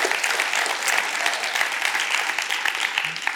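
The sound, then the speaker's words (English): A crowd bursts into steady, sustained applause, many hands clapping in a dense, even wash of sound that holds at a fairly loud level throughout with no voices standing out. “Would you give him a hand clap?”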